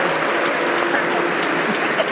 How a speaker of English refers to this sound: They're booing for how much you brag about your baby.